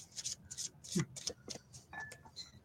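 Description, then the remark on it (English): A deck of children's story-game cards being shuffled by hand, a quick series of soft, papery swishes and slides, fairly quiet, with no talking. “I attempt to shuffle these.”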